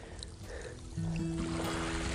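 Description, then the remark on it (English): Faint, gentle lapping of water along the shore of a calm sea at a beach with almost no waves, on a colourless, very mild day; a soft continuous wash with no breaking waves; a low steady hum joins partway through. “Very gentle, smooth surface of the water.”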